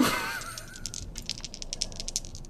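Dice rattle and clatter across a hard surface in a quick burst of bright, irregular clicks, settling after a couple of seconds with no voices over them; a damage roll in a game.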